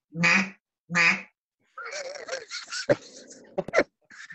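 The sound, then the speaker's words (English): A mallard duck call blows two loud, nasal quacks with a pause between them, then breaks into a rougher, rapid run of raspy quacking chatter with a few sharp clicks. “That's when you're hunting that mallard elk.”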